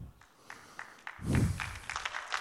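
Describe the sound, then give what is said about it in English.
A few scattered claps at first, then an audience breaks into steady, fairly loud applause that swells and carries on to the end, with a low murmur of crowd noise underneath. “Oh, you're clapping now.”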